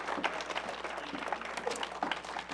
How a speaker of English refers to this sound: I'll give the Lord a hand clap of appreciation.